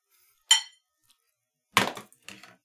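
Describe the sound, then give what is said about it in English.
Two pairs of hard, very heavy metal six-sided dice clatter in three bright, clinking bursts as they are rolled: one sharp toss, then a longer rattling roll and a shorter tumble as they settle. Fairly loud, with no talking. “I got two pairs of metal dice sitting immediately to my right now. I rolled them.”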